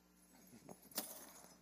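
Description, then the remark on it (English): A brief metallic jingle of keys being tossed, a couple of quick clinks then a brighter rattle as they land, fairly faint, with no talking. “Somebody give me their keys right now. Give me their keys.”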